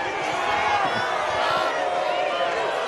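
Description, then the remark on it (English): A large crowd at a political rally in Pickens, South Carolina shouts "Traitor" and jeers together, a loud, continuous roar of many overlapping voices that stays dense for the whole few seconds. “Listen as the crowd shouts, "Traitor."”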